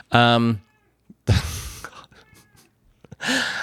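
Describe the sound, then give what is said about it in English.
A female cat meows loudly, a short sharp cry, then breathy, rustling noises follow before another drawn-out meow at the end. “Oh my God, she's so annoying. What an obnoxious cat.”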